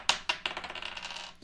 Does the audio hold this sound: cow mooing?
no